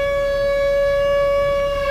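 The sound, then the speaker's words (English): An air raid siren sound effect wails in a steady, sustained tone, holding one loud pitch with bright harmonics stacked above it, with no voices present throughout. “Air raid. Sound air effects.”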